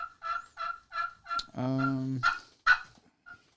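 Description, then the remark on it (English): A wooden turkey call mimics gobbling: a quick run of short yelping clucks, a drawn-out tonal warble, then a few sharper yelps trailing off, moderately loud with no talking. “But the birds might not like that one.”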